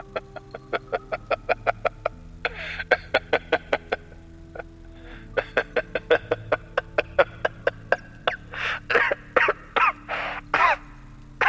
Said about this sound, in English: laughs and continues coughing into his handkerchief.